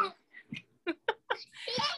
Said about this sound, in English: I do have two kids yelling as you're talking.